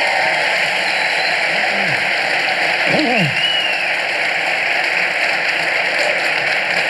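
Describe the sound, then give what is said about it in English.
A crowd applauds steadily in a dense, continuous wash of clapping that holds an even loudness throughout, with a brief rising whoop or cheer cutting through partway in. The applause is for Dave Rubin, host of the Rubin Report, as he is introduced as a guest. “Let's have a round of applause for Dave.”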